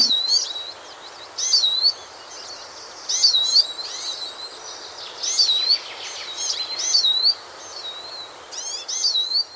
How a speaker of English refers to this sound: Tweet of the week this week is a great little bird called the siskin. It's a finch, and like goldfinches, has recently, that is in recent years, taken to feeding in gardens. It's a nice little garden bird.